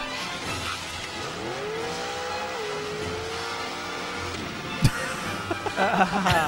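A small motorcycle engine in an Amex commercial featuring Paul Newman on a tiny motorcycle revs steadily, its whine climbing and dipping in pitch over several seconds, with a brief sharp knock and busier, louder revving toward the end.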